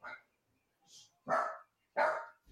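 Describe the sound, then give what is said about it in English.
Dogs bark in loud, sharp bursts, a quick bark followed by two big, full barks about a second apart, agitated, with brief quiet gaps between them. “The dogs are losing their fucking minds.”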